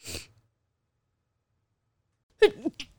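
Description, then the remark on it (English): A brief breathy burst, then a long silence, and then a single sharp, loud sneeze with a short trailing catch of breath. “Well, I stopped recording before you started sneezing.”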